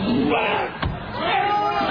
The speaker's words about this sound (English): Oh, ow, ow. You know what it is there? It's like the yelp, then the tearing, and then the scream, and then the thump.